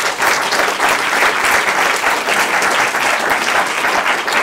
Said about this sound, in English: Anyway, let me just give a round of applause here to our great panel.